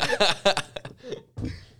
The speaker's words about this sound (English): Dude, the time I start coughing in this is the day this shit goes downhill.